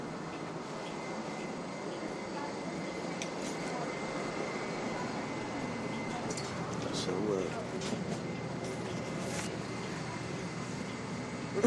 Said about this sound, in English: We're on the bus now.